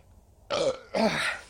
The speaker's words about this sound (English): Just get all the burps out before we start. I'm excited. I'm so burpy.